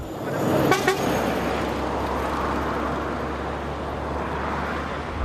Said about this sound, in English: And every car and every truck that passes me by, the drivers are staring intently into their rear view mirrors or into their side mirrors. And that's because coming up the road just behind them is a man in a chair, and he's being pulled by 8 dogs.